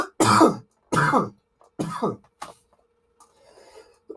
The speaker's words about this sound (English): Anticipatory cough.